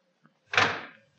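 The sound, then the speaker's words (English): A car door shuts with a single solid thump, preceded by a tiny click of the latch, then a brief fading rumble. No one speaks. “Come on, get in the car, kid.”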